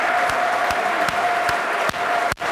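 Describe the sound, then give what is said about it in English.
Steady, sustained applause from a football crowd before a Blackburn match kicks off, a minute's applause for COVID victims: a dense wash of clapping from many hands with a few sharper thumps at regular intervals and a faint constant tone running underneath. “Minutes of applause.”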